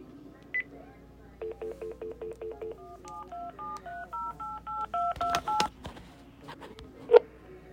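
A rapid string of telephone keypad tones, short evenly spaced beeps at shifting pitches, dialed clearly, followed by a few clicks and a sharp knock near the end.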